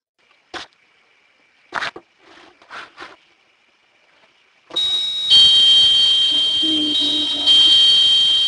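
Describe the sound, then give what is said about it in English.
A few short, sharp bursts come first, then a doorbell starts ringing loudly and keeps going without pause, a bright, steady electronic tone layered over a rough, noisy background until the end. “You hear it over the doorbell?”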